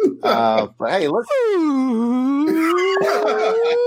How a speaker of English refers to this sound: That's a slide. We don't want the slide whistle.